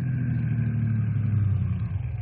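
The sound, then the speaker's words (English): A car engine hums steadily with a deep, rumbling low drone, constant, as the car approaches along a highway. No voices are heard. “Now, here come car now, Bill.”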